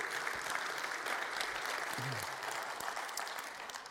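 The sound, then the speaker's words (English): An audience claps steadily throughout, a dense, sustained wash of many hands, with a brief voice murmuring faintly underneath around the middle. “If one person claps, we all have to clap.”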